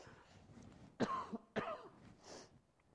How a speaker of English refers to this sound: Sorry, I still have a little bit of a cold, so I still have a cough. So you just forgive me for a little bit, please.